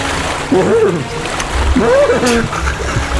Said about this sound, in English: He swan dives into the water.